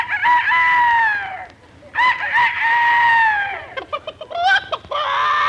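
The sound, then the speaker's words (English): A rooster crows loudly at 5 o'clock in the morning in California, heard through a bedroom window after the daylight saving time change: two long, drawn-out, high-pitched crows, then a flurry of short choppy calls and a final crow, with no talking. “This sudden change has even upset the barnyard animals.”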